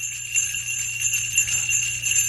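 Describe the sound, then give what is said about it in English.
Steady, shimmering Christmas jingle bells ring continuously at moderate volume, a bright metallic tinkling that sustains without pause over a low background hum. “So all of a sudden you hear, can we get a little jingle like Christmas? Do you have any Christmas bells?”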